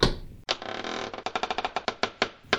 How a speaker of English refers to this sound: A plain, black wooden door. No hinges, no wall. Just a door in between two trees. What? What is this? How is this possible? This ghastly door. Will it lead me to her? Francisco knocks on the door.